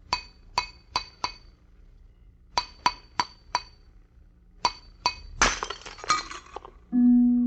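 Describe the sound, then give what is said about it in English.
Three sets of four sharp, ringing clinks on glass, then a loud crash as a closed glass vessel shaped to the exact contour of a man's head shatters, with fragments tinkling briefly before a low sustained tone begins. “The glass you just heard broken was not ordinary glass.”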